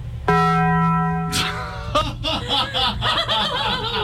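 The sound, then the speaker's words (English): A Taco Bell-style chime rings out once, bright and loud, holding its tone for about a second before giving way to several people laughing and chuckling. “I just wanted to see if you would get up in the middle of your report and walk to the nearest Taco Bell.”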